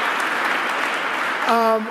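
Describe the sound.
An audience at a public event claps steadily as another round of applause for two speakers, producing a dense, even wash of applause throughout. Near the end, a short sustained voiced cheer rises above the clapping.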